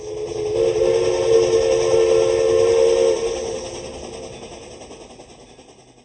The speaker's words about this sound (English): and yet just like that pastor in that little German church, and just like that woman at a well in Samaria, this man could not erase the sound of that whistle blowing.